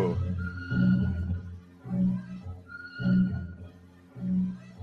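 A hip hop track plays on its own, a looping beat with deep bass notes and a sustained higher tone repeating roughly every second, steady and moderately loud, with no voices over it.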